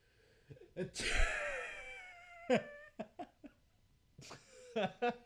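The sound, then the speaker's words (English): A voice imitates a long, drawn-out sneeze, a loud rising intake swelling into a sustained harmonic wail, then breaks into short, choppy bursts of laughter. “It seemed like the sneeze went on too long. I was expecting a much quicker sneeze laugh.”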